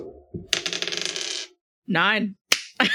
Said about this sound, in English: Just roll a d10. Okay. Oh, no, you're getting the dice out?